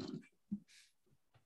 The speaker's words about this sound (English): What the dog doing?